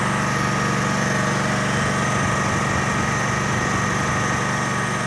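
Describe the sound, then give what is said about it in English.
A gas-powered machine engine at the Mokelumne River Fish Hatchery, about an hour northeast of Modesto, runs steadily and loudly with a constant droning hum and a buzzing, rattling texture that never changes pace. No one speaks. “Late one Tuesday afternoon, I found myself at the Mokelumne River Fish Hatchery, standing in front of a gas-powered machine that looked like it would be more at home on a construction site.”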